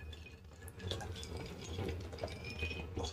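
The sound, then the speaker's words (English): Quiet sounds of someone taking a big gulp from a glass, with liquid sloshing and a few small, sharp clicks as the glass taps against a tooth. No one speaks. “Did you just hit your tooth? Sure did.”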